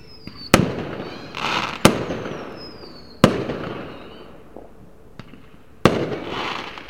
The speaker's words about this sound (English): F is for fireworks.